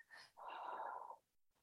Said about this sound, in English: Just taking a nice deep breath in through the nose and out through the mouth. Ugh. One more. And exhale.